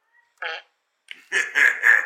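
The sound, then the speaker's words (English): A short cartoonish fart sound effect plays from a soundboard, a brief buzzy burst followed after a pause by a longer sputtering, honking series of three raspy blasts, fairly loud with no talking. “The fart was weak.”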